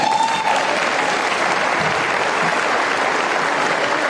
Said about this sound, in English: The people clapping are the ones who work there.